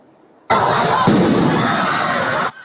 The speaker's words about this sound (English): after a group of teenagers started lighting off fireworks in Bayside Marketplace. Now, this scared many people half to death. Literally some people running.